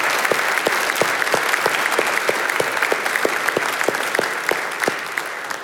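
A large group claps together in sustained, steady applause giving thanks to God for a staff member's work, with dense overlapping hand claps at a fairly loud level, continuing throughout without talking.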